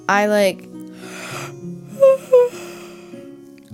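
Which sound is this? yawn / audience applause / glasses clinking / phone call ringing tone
yawn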